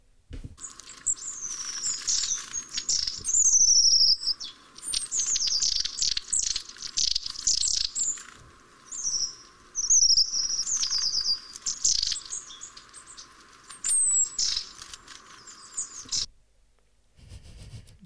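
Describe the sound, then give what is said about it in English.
Long-tailed tit calls: a busy stream of thin, high-pitched chirps and trills, overlapping and repeating rapidly for about sixteen seconds before stopping, with no talking. “It's the long-tailed tit.”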